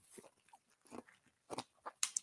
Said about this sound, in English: What the hell are you chewing on your water again, …? Yeah, got ice in there.